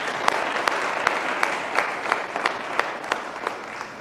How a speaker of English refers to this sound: Can we all please give Ms. Zion another round of applause?